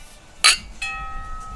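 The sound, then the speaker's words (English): A sharp metallic clink, then a second strike that rings out as a clear, sustained chime tone, alone without any talking. “The chimes have been that kind of amazing because I took the chime thing down away so it like wouldn't be able to bang into he it.”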